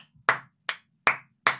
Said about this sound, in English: Stand, please. Everybody clap. Everybody clap.